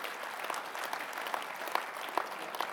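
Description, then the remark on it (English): A church audience applauds itself for its generosity, many hands blending into a dense, even crackle at moderate loudness, with a few sharper individual claps popping out now and then and no voices. “So why don't we give ourselves a big clap and tell ourselves we're going to”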